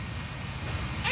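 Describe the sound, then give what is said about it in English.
A squirrel's mating call: one short, shrill squeak midway through, then a fainter high chirp at the very end, over a low, steady rumbling background. No one speaks. “It takes like, you know, 3-4 seconds and squirrel mating? Really?”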